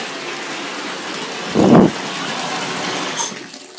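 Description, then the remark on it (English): Steady rush of water running into a bathtub, with a brief louder surge partway through before the even flow carries on, and then the water is shut off. No voices. “Oh, and by the way, before I forget, let me shut off this water.”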